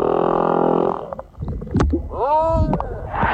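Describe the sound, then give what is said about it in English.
Eerie song of a male humpback whale singing for a mate: a long droning moan, then low grunts and pulses, followed by a rising, bending wail with rich harmonics, loud with no voices present. “Humpback whale singing his heart out for a mate.”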